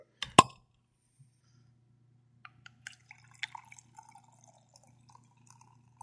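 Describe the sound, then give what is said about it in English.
A single sharp clack rings out, then beer trickles softly from a one-liter swing-top bottle into a glass as it is poured, with faint fizzing drips and a steady low hum underneath. No one speaks. “As Andy pours himself his glass, I will tell you guys what I am looking at here.”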